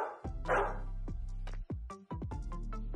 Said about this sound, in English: And Samper, the little dog. Half dog, half detective, and still part of the secret setting. Woof!